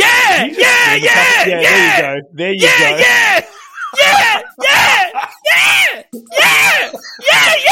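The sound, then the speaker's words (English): A woman's loud, strained screaming, delivered in a string of harsh wailing bursts with brief gaps between them, the pitch bending and cracking throughout. “Next thing I knew, she was all up on me screaming, yeah. But screaming. Don't forget, screaming.”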